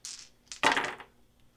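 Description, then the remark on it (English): Dice clatter across a hard tabletop as a player rolls to hit in a tabletop game, a brief rattle followed by a sharper burst of tumbling clicks that quickly settles. Fairly quiet, with no voices. “So I have to just roll this 3 times.”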